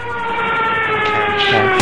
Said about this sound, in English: Oh god! The helicopter just crashed down!